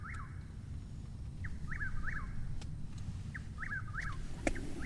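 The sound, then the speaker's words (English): A bird, heard while hunters sit waiting for wild pigs, repeats short rising-and-falling calls in quick clusters of two or three, getting closer, clear above a steady low rumble of background noise, with a few faint clicks scattered through. “I feel like this bird, as a soundtrack, is like a symbol of my anxiety. Look, it gets closer and closer.”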